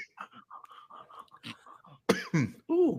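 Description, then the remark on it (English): A run of soft, rapid throat noises builds into three louder, raspy coughs, the last one drawn out and strained. “Hey, you got a cough to get off.”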